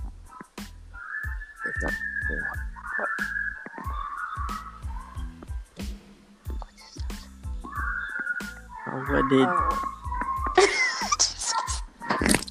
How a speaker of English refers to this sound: Guys, it's dogs. It's dogs. Just viewers, sorry. You know we live in Jamaica, so that's how it is.